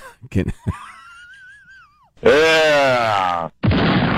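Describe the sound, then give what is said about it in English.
A bomb explosion sound effect for a West Coast bomb explosion update: a few clicks, then a thin wavering whistle that slides downward, followed by a loud, rough, voice-like boom and a final burst of harsh static noise, like a mouth-made bomb drop and explosion. “Is that our sound effects now for the West Coast bomb explosion update? Bomb explosion.”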